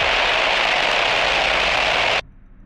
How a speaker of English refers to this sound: All further comms are drowned out by radio static.